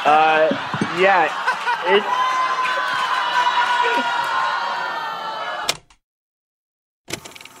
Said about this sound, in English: I'm going to go ahead and pause and say thank you, Detroit, booing that guy out of the room because he said I shouldn't be there.